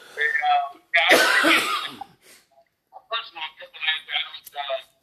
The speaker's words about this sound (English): Excuse me, I'm choking. I gotta get a cough drop.